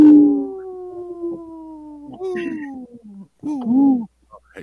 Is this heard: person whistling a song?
no